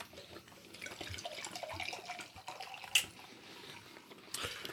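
A drink is poured into a cup, a steady splashing trickle running for several seconds, with a sharp clink near the middle and a brief swell toward the end.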